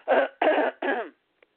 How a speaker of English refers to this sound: Excuse me, I got to clear my throat.